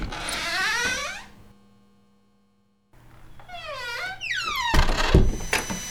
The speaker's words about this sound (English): And, okay, well, let's just open up the door and see if we can find Wilson.